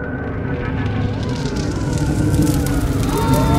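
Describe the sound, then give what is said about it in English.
Emergency vehicle sirens at the roadside scene of a car accident wail with rising and falling pitch over a dense, rumbling roar of engines and commotion, steady and fairly loud throughout, with murmured voices mixed in beneath. “I woke up when I heard the sirens.”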